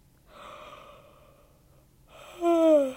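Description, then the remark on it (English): A single drawn-out yawn: a long breathy inhale, a brief pause, then a louder voiced exhale that slides downward in pitch as it trails off. “Dude, the amount of time that I've yawned is fucking insane.”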